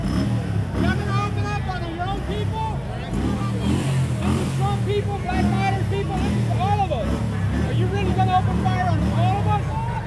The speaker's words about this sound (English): There's a man in the street with a motorcycle. He is revving.